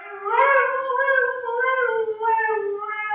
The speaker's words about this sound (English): That's a husky. That is correct. That was totally a husky.